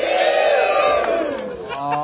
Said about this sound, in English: Anyway, say all to the folks in Reading, say wee-oo!